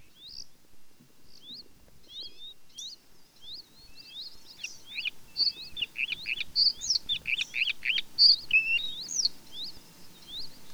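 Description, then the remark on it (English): A bluethroat sings a varied, rapid song of high chirps, trills and whistles, starting with scattered phrases and building into a dense, energetic stream. It sounds clear, with no voices. “The bluethroat of the arctic podcast”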